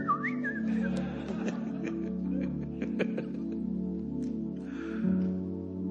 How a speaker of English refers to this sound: She said, "You're whistling in the grocery store." "Nobody whistles in the grocery store." "I guess I do."